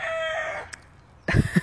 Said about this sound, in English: I guess our rooster is signing off as well.